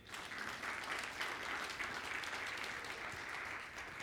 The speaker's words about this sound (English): That's worthy of an applause.